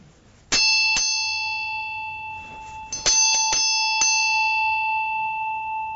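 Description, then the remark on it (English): A metal bell is struck several times, each strike leaving bright, sustained ringing overtones that hang and slowly decay, with a quick cluster of strikes midway and no voices. “Does a bell speak to you?”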